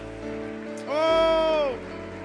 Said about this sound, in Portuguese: Receba essas palmas que são tuas, meu Deus.